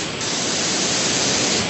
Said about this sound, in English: Are you on mute? Can you hear me? Wow, there's horrific white noise going on. Let me, I'm going to drop you.